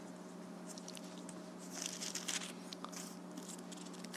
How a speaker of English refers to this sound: hold on, I'm in the wrong place. Turn the page.